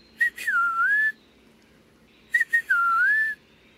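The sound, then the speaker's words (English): An eastern peewee sings two clear, slurred whistled phrases, each opening with quick short notes before a long note that dips and rises, separated by a pause over a quiet, faintly hissy background. “The eastern peewee has a catchy tune, too. Pretty much whistling out its name, peewee.”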